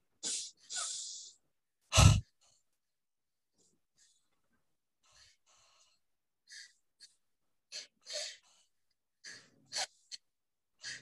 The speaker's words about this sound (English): And we'll do the double breathing Kriya together. 30 breaths, starting with 10 breaths in the abdomen. And begin.